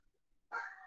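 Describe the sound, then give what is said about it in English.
A dog lets out a single drawn-out, whiny bark that starts halfway through and holds to the end, getting louder, with no talking around it. “Sorry about the dog.”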